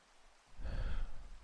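Steady rain swells in after a brief quiet moment, a dense hiss of falling drops over a low rumbling undertone, continuous with no voices.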